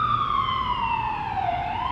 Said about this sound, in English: I'm gonna let this siren pass.